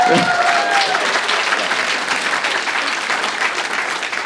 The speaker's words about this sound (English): They're so committed to a round of applause at that.